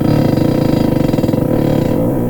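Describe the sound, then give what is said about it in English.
A squeaky chair creaks in one long, loud, drawn-out groan with a low, buzzy, rapidly pulsing tone, heard on its own for about two seconds. “I just noticed how squeaky this chair is.”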